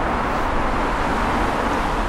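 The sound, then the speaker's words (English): Steady, dense roar of road traffic passing through a tunnel underneath railway tracks, a broad rumbling wash, continuous without distinct individual passes, echoing. “It's going to be a bit noisy because of the traffic passing underneath.”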